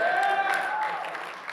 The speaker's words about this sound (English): It means when you come into agreement, you're coming into agreement, striking hands, coming into agreement, declaring victory. And so what you're doing is you clap your hands. Yes! Victory! Let's do that again.